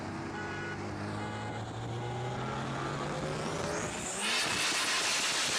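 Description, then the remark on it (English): A powerful sports car engine rumbles, its pitch climbing steadily as it revs, then bursts into a loud, raspy roar near the end. “You hear that fucking monster?”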